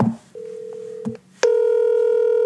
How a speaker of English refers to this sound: It's ringing. It's ringing. Hello.